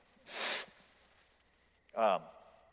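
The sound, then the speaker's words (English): A person blows their nose: a short, airy rush of breath, a pause, then a louder, honking blast with a buzzy tone. No one talks. “I'm going to blow my nose.”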